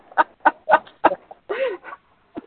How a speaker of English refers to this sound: Well, we'll be listening to hear about the chicken saga. Oh, well, and you may be hearing them in the background. It just all depends on how vocal they get. They were quite chatty yesterday.